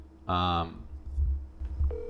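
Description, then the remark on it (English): A loud electronic phone tone sounds for about half a second, followed by muffled low rumbling and a thin, steady tone starting near the end, as a cold phone call is placed. “See if we give him a phone call real quick.”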